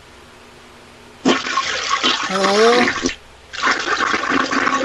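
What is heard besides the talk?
toilet being flushed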